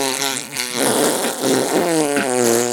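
A sustained, buzzy fart-like noise with a wavering pitch fills nearly three seconds, loud, briefly dipping midway; it sounds like a voice blowing a raspberry rather than a real one.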